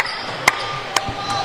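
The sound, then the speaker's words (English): A couple of sharp, slow hand claps at a basketball game, spaced about half a second apart, crack over a low crowd murmur, followed by a faint softer tap. “Let me give him a hand clap of praise.”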